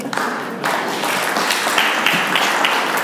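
An audience applauds steadily, a dense wash of many hands clapping at once with scattered sharper individual claps standing out, sustained at an even, fairly loud level throughout.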